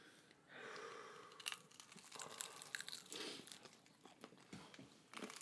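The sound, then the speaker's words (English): Crisp crunching of someone chewing crunchy food, a dense run of irregular crackly bites and grinding over several seconds, with no one talking. “I will tell you about it after I'm done chewing.”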